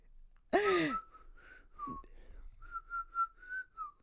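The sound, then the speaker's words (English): A loud vocal burst opens, then a person whistles a short catchy pop-style tune: a string of bright, clipped notes in a bouncy rhythm, fairly clear, with no talking. “they do like the whistle of like a … song”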